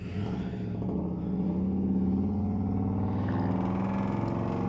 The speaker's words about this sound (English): Yeah, so quite a bit louder. A lot of loud bikes, trucks, a lot of loud music.